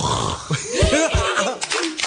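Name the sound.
people imitating snoring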